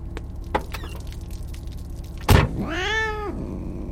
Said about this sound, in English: Why'd you bring your fucking cat? Doug's a good boy. Shush, Doug.